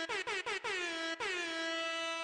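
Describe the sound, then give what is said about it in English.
A loud air horn blares in four quick staccato bursts, then holds one long sustained blast that slowly fades, the classic party air horn effect with no voices present. “Boom. DJ Foghorn.”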